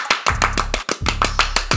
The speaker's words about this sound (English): Let's put a clap to it real quick.